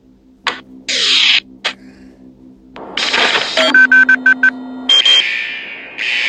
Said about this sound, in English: What's going on? Looks like he set off some sort of alarm in the vault.